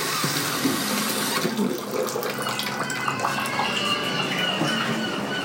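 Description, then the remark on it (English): Whale sounds play from a cassette tape on a cassette tape player: low, drawn-out moans that swoop up and down, rising faintly over a steady watery hiss with no talking. “Are those whale sounds?”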